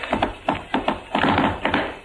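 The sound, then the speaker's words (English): Quick, crisp tap-dance steps clatter in a rhythmic pattern of paired and clustered taps, fairly loud, with a brief flurry of rapid taps in the middle and no voices. “I'm going to do a step that nobody else in the business can do except me.”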